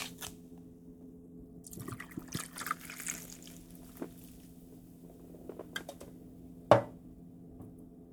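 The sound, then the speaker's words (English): Ginger beer pours into a glass to top off a Pimm's cup cocktail with a soft fizzing hiss, followed by scattered small clinks and one sharp tap near the end, with no talking. “And then top it off with ginger beer.”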